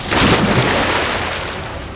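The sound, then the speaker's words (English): A loud, sudden crash of a wooden ship's main mast, chopped through, splitting with a groan and crashing overboard, a dense burst of noise that rumbles and slowly fades over two seconds, with no voices. “With a loud groan, the mast split and crashed overboard.”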